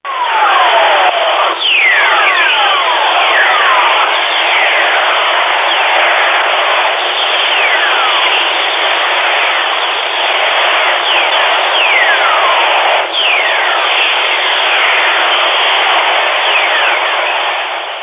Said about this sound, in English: And we'll start with the Earth. And this is a recording of something called whistler waves. So I'll play that now.